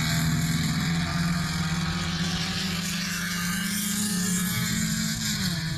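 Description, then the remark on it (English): A race car engine runs steadily at high revs, a loud continuous buzzing drone with a strong low tone that rises slightly in pitch toward the end, no voices present. “It's weird. His car sounds great.”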